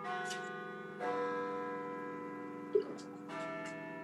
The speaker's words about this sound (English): By the way, a note for the listeners out there. Did anybody notice the brand new Peace Tower bells that we used? Because I never got any feedback on that.